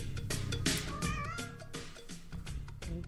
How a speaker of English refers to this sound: I like the cat meowing in the back. Meow.